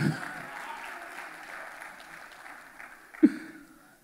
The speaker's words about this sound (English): All right, clap for this young man. He's sweating up here.